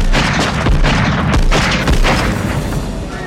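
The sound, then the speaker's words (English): Loud, booming gunshots from the climactic scene of the film Die Hard ring out, a few sharp blasts within a dense, echoing roar that fills the whole stretch, with no voices. “And then we hear a gunshot.”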